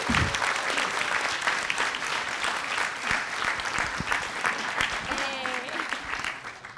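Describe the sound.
A crowd at the Roxy Theater breaks into sustained applause for the theater and its booth staff: dense, steady clapping that holds at an even loudness for several seconds, with a few faint voices and a brief whistle mixed in.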